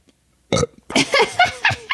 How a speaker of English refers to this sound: I would have just like, see, I told you didn't want to have a LaCroix. Here you are burping.